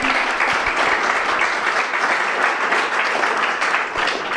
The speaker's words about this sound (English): So let's have a big round of applause for our guests this evening.